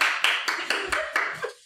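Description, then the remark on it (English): A quick, steady run of about seven hand claps, evenly spaced at a brisk rhythm. Each clap is a sharp, bright smack at a moderate level, and they continue without interruption. “You're clapping.”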